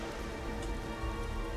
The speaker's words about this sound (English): Because he opens up his umbrella and walks out into the rain.